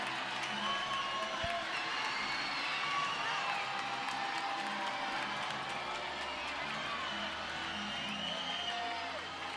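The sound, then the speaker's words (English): A dense crowd of spectators at a volleyball match roars and cheers steadily across the whole stretch, with scattered shouts, whistles and a brief clap rising out of the broad din, reacting to a ball that appears to be out of bounds. “They're watching the screen, and it looks like it's out of bounds by the way they're cheering.”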